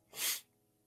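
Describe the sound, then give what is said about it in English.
A single sharp, breathy cough bursts out for about a third of a second, loud and hissy, then fades to quiet room tone. No one speaks. “Like I said, once again, y'all forgive me for coughing.”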